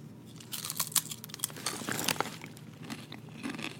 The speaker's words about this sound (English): That was a good crunch. I feel like Ruffles will be better. Kind of good.